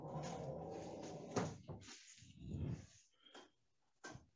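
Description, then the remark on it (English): A heavy sliding barn door on a walk-in closet in a renovated house rolls along its track with a low rumbling scrape, a couple of thuds along the way, and a sharp knock as it stops, with no talking. “And you would think this would be just a closet because it has a barn door.”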